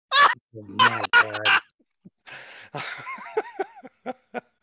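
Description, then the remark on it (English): A person makes a string of loud snorting and snuffling breaths, like a pig rooting around, with grunting, laugh-like bursts and short sniffs trailing off at the end. “You know those fucking, you know those fucking like pigs and hogs that they train to fucking look for truffles? That's what you sound like.”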